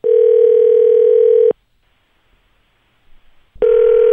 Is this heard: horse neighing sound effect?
no